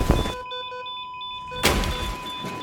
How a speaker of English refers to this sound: She looked at the door, but couldn't hear anything over the blaring alarm.